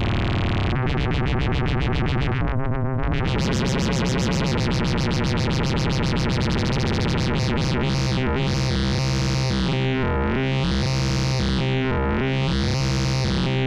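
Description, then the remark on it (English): A loud, buzzing synthesizer tone, a sine wave amplitude-modulated by a Pico VCO turned from LFO mode into the VCO range, with a dense, metallic sideband texture that flutters rapidly, then settles into slowly sweeping, wavering swells. No voices, just the electronic sound throughout. “Just turned it into the VCO range.”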